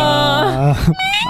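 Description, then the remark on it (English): A person's voice imitates the groaning meow of a cat named Toast, a 'Tina groan': one drawn-out, low, nasal moan that bends downward in pitch and breaks off, loud, followed by a brief higher whine. “And he goes, Toast does the, like she's like the, is what half of her meows end up sounding like. It's like a Tina groan.”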